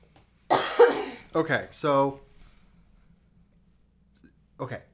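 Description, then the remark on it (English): A person coughs, two or three harsh bursts followed by a rough, throaty voiced tail, then quiet with a faint brief sound near the end. “I'm gonna cough.”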